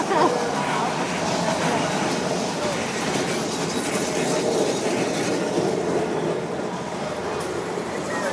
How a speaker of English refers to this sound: And a rickety-ass tram line.